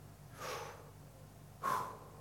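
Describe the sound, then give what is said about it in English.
Two deliberate breaths imitating a pronunciation of God's name, the letters yod, hey, vav, hey: a soft, airy one first, then a sharper, stronger one after a short pause, with faint low hum underneath and no talking. “In fact, if you were to try and pronounce it, it would just sound like breathing.”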